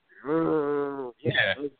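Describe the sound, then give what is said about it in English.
A person imitates the cow sound of a farm-animal toy with a turning wheel: one long, drawn-out, steady moo followed by a shorter, rougher second call after a brief pause. “Like, listen, the Dreamcast controller was built like that wheel used to turn, and then it would point to a farm animal, and it would make the sound.”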